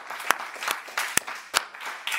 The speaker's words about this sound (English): Will you give God a hand clap of praise here tonight?